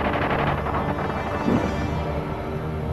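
Bursts of gunfire crackle and rumble together in a dense, steady barrage across the streets, unbroken across the few seconds, with a slightly louder swell midway and no voices.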